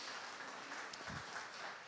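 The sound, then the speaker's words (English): An audience applauds to welcome a special guest invited up to the stage, a steady, dense wash of hand claps that holds at an even level throughout, with no voices rising above it. “Let's welcome, give him a big clap.”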